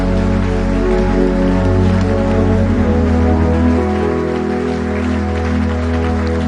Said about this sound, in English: Come on, can I have hands in hot D? Clap hands in hot D. Hot D at the back. I can see hands. Clap your hands at the back.